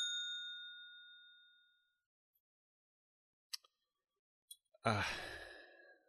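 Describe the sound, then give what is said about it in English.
A single bright bell ding, struck as a spoiler warning, rings out clearly and fades away over about two seconds, followed by a few soft clicks and then a long breathy sigh. “So I'm going to hit the bell because this is a movie whose a big part of its merit is in its twist ending, and anything more than that would be a spoiler, so I'm going to hit the bell.”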